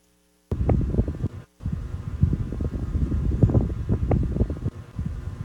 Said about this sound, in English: So creepy silent. It sounds like there's an air conditioner like close by.